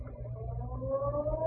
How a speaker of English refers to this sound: The next morning, just as the ferry building siren was announcing 8 o'clock to downtown San Francisco,